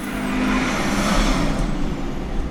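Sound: car driving by outside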